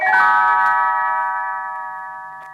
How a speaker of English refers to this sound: You will know it is time to turn the page when Tinkerbell rings her little bells like this.